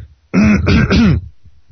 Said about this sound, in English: Excuse me, I'm having some trouble with my throat today, so I apologize for coughing a lot.